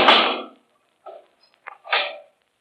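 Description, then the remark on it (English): A heavy steel door swings shut with a loud, hissing metallic whoosh, followed by a few short clanks and scrapes as the bolt is thrown and locked. No one speaks. “You can lock that steel door, Kelvin.”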